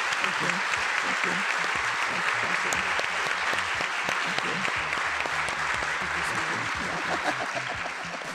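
A steady wash of audience applause for Dolores Huerta, dense clapping from many hands that holds at an even, fairly loud level for several seconds before tapering slightly at the end.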